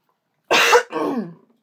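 A single harsh, phlegmy cough bursts out loudly, followed immediately by a rough, gravelly throat clearing that trails off, all within about a second with no talking.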